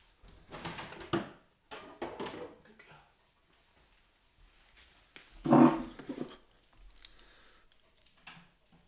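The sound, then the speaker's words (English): A pet door flap rattles and clatters open in several short bursts as a dog is let out, with one louder knock in the middle and quiet pauses between the handling noises. “Camille's at the flat door flap and I closed it so Gorman wouldn't go out and bark”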